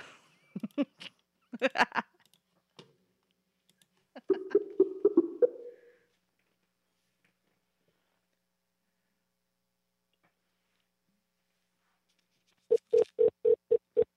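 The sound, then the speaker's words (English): A phone line's ringback tone: rapid, buzzy pulses of a mid-pitched warbling tone in bursts, a long silent gap, then the stuttering ring starting up again. “What kind of fucking ring is that?”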